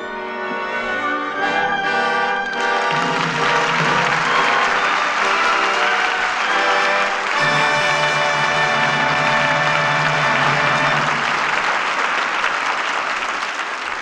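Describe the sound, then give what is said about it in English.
A studio audience bursts into loud, sustained applause at the end of the evening's play, carrying on for over ten seconds as Maureen O'Hara and John Hodiak come out for a curtain call, with orchestral music swelling at the start and playing steadily underneath the clapping. “Your applause places the seal of approval on tonight's play and brings Maureen O'Hara and John Hodiak to the footlights for a curtain call.”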